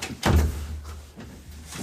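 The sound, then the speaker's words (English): A single door shuts with a solid, fairly loud thud, its low boom fading quickly into faint background noise with no talking. “Would you mind to close the door before all the kids show up and make noise here?”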